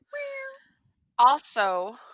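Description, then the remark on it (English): Two drawn-out meows voiced by a person, one short and steady and then a louder, rising-and-falling one after a pause, with nothing else around them. “And as always, we were filmed in front of a live studio audience of cats. Meow. Meow.”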